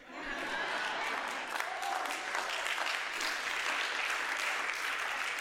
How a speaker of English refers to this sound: Two claps.